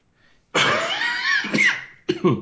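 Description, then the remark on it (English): A loud cough right into the microphone, a long harsh burst followed by a shorter second cough, with no talking around it. “Coughing into the microphone.”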